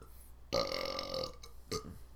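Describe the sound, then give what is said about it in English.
A loud, drawn-out burp rumbles for about a second, followed by a short second belch, with no talking. “I think I have to burp.”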